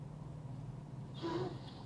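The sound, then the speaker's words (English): A large tractor-trailer truck idles with a steady low rumble close by, then a short burst of brake hiss and squeal as it comes to a stop. “Oh, we got a truck stopping right here.”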